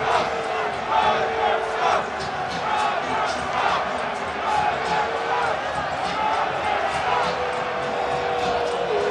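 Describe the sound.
Dense, steady roar of a large crowd of fans at a Kansas City Chiefs football game at night, a continuous wash of many voices shouting and murmuring at once, with scattered louder yells rising briefly above the din.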